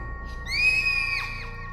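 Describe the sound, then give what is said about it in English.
A young girl's shrill, terrified scream at night at home holds a piercing high pitch for nearly a second, then breaks into a few quick downward-sliding cries. It's loud, with no talking. “she wakes up to the sound of her daughter screaming.”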